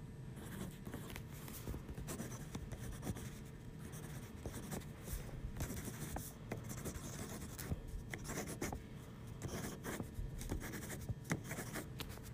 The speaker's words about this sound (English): Pencil writing.